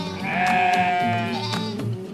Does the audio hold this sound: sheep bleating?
yes